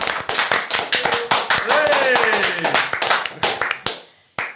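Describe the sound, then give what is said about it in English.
A crowd of many people in a room breaks into loud, rapid hand clapping, dense sharp claps continuing for several seconds while a voice cheers over it, then the applause tapers off abruptly. “Hand clap.”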